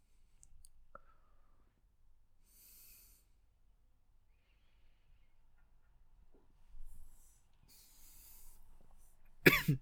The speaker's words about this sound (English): I do apologize. I just coughed into the microphone.